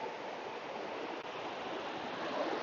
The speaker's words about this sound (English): Well, I stand here at the moment watching, I don't know, 2 meter waves and people going down the face of those waves.